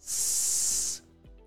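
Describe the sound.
A voice produces a steady, prolonged, fairly loud hissing S sound, made with the tongue tip dropped just below the roof of the mouth so air passes between, lasting about a second before cutting off into quiet, imitating a snake's hiss in a pronunciation exercise.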